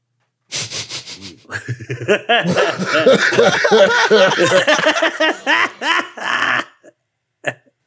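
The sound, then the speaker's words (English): Someone coughs hard and repeatedly after smoking, a loud, raspy fit of hacking with strained, wheezy breaths in between, fading out and ending with one last short cough. “coughs his lungs out and you smoke”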